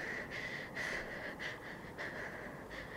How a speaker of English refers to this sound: There is heavy breathing for several seconds.